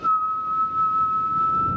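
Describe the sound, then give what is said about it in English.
A single sustained whistled note opening a music cue, held steady and fairly loud with only slight pitch bends, put in a big artificial reverb that gives a spacious wash, with no talking. “And that's how I started this cue. Whistling.”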